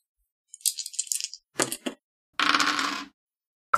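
dice being rolled

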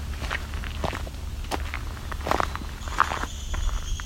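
downy woodpecker

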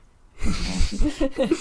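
heavy breathing

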